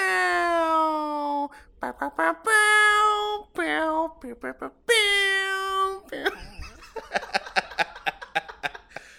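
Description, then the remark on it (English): A person's voice imitates a cat, drawing out several loud, exaggerated meows in quick succession, followed by a burst of rapid, choppy vocal noises and laughter-like sounds. “Meow, meow.”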